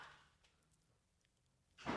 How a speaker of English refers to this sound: No, there is no door. No. My wife just closed the child gate.